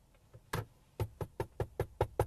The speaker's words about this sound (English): Police knocking at your door. That's how that goes down.